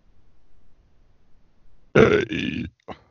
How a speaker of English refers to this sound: I burped.